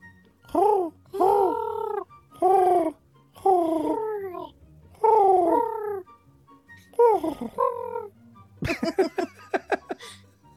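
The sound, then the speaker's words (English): A person imitates a pigeon with a series of about six warbling, throaty coos, each bending in pitch, then ends with a quick run of short choppy bursts. “I don't think you've ever done your pigeon sound.”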